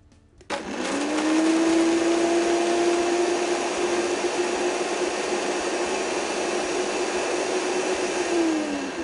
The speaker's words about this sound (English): So I'm going to put those in the blender and I'm going to blend it into a powder.